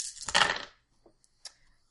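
Dice for a Wits plus Composure roll clatter across a hard tabletop in a quick, bright rattling burst, followed by a few small scattered clicks as they settle, with no talking.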